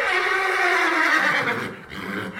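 A horse whinnies loudly, a long shrill neigh with a wavering, descending pitch that trails off into a breathy snort after about two seconds.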